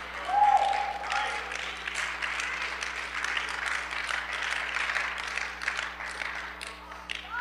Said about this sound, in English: I appreciate the three people that clapped. It was very kind of you.